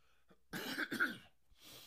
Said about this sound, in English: I just coughed and I apologize for that. Doing it on live TV is so embarrassing.